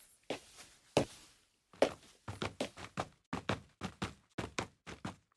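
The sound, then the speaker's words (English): Crisp footsteps on a hard surface from a foley footstep sample instrument plugin, starting with a few slow, spaced steps and then settling into a quicker, steady walking rhythm of about a dozen distinct impacts, with no voices. “It's a little akin to like a sample library of a piano or a drum set or something like that, except that instead of like drum hits or individual notes on a piano, it's all footsteps of various types of shoe on different surfaces.”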